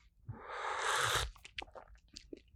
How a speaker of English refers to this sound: I have some tea today. I ran out of decaf coffee. Hold on. Listen to this. There we go. Let's take a sip. Let's see how it tastes. I got the green variety today.